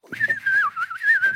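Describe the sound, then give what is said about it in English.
A person imitates a grandfather's freestyle whistling: rapid, warbling and birdlike, a wavering pitch with no recognizable tune, fairly loud for about a second and a half, with faint background voices underneath. “Like my grandpa would whistle maniacally like a bird. Not a tune, but just freestyle whistling.”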